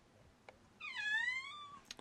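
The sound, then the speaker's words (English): A single drawn-out, high-pitched kitten meow, rising then slowly falling, heard clearly with a couple of faint clicks around it and no talking. “There's a kitten here who is complaining about being left.”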